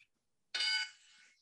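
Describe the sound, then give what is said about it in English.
A game show wrong-answer buzzer used in a trivia quiz: a single harsh, buzzy electronic tone blares abruptly for about a quarter second, then trails off into a fainter sustained ring, with no talking. “Did not have the buzzer ready.”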